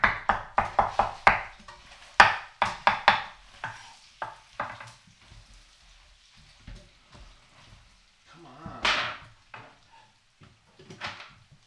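A quick run of sharp, crisp knife chops on a board, then scattered slower strikes and a brief sizzling swell near the end. No one speaks.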